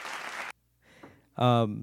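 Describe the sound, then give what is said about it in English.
A half-second burst of a crowd applause sound effect, a dense loud clatter that cuts off abruptly, followed by faint murmuring and then a loud, sustained voiced shout. “Listen, I know we're supposed to be social distancing, but I still have a few of my bigger fans over here hanging out. I got the Patreon crowd.”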